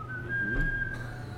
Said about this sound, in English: Come on. Take us out. We have a new song to whistle today, though. Isn't there?